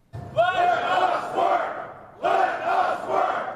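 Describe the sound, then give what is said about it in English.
A large crowd of Boston fire department members chants loudly in unison outside City Hall, two strong rhythmic bursts of many voices shouting together with a brief lull between them. “Members of the fire department chanting outside City Hall.”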